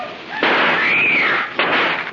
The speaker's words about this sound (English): While Casey and Ali seek a means of crossing the channel, they are warned of approaching danger by several shots, and Amira screams for help.